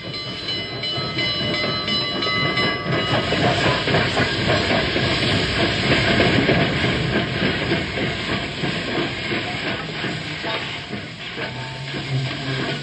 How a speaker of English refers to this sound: Don't be impatient, old-timer. The train just pulled in.